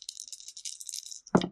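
Dice rattle briskly in a cup for over a second during a tabletop role-playing game roll to check for a wild magic event, a bright clicking clatter, then land with a single louder thud and quick tumble at the end.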